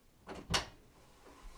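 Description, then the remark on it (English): An office door opens with a quick rattling click followed by a louder thud, then it goes quiet apart from a faint soft bump near the end. “You can open the door.”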